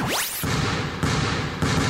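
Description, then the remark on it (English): A rising whoosh opens, then a basketball is dribbled in three steady, evenly spaced bounces over a dense, loud wash of background noise. “A dribble, lets it fly.”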